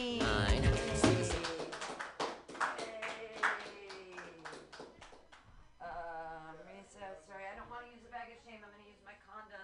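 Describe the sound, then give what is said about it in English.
At a comedy show, a brief burst of clapping for the last comedian, a scattering of sharp hand claps over voices, fades after several seconds as talking takes over. “Yay, clap for me.”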